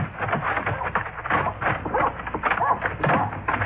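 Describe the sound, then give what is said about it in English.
A male dog in a boarding house barks repeatedly and excitedly, its yaps blending into a dense, busy background that continues steadily throughout. “Did you know the dog is back in this house?”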